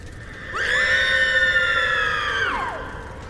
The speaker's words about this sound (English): A woman screamed from somewhere else inside the camp. Then he heard another scream.